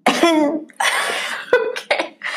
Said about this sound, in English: Sorry, I have something stuck in my throat. You just cough it up.